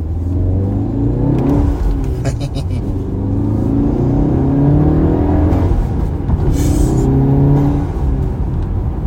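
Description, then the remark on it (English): A car engine revs loudly, pitch climbing and falling in repeated pulls, with brief hissing whooshes between revs like a turbo blow-off valve venting. The car has a manual clutch and an intake. “Blow off sounds nice.”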